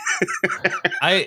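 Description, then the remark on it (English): A quick run of four or five sharp coughs in rapid succession, ending with a longer, rougher voiced cough; it may be a person imitating coughing. “Cough, cough, cough. There you go. That's the sound.”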